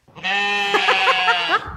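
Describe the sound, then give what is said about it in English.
A child's voice imitates a sheep's bleat, one sustained, wavering 'baa' lasting over a second, with a rapid quaver in the middle. It is clear, with no other talk. “What noise does a sheep make?”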